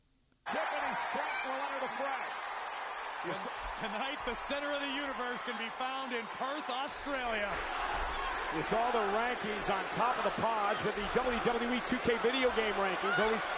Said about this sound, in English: I'm going to, in fact, play an audio here regarding Tiffany Stratton because of the performance that she put on today and the crowd reaction when Tiffany came out, man. Listen to this ovation.